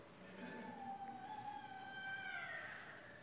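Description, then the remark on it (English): A single long, drawn-out cat meow, faint, its pitch wavering and rising toward the end over a low background hum. “They have a cat?”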